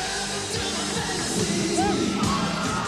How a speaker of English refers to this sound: Tonight, more than 1,000 screaming women did live out their fantasy at Memorial Auditorium.